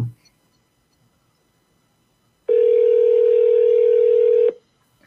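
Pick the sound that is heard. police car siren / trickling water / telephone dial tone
telephone dial tone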